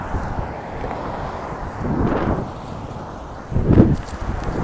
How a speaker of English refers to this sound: It's more breezy over here, out on San Fernando Road.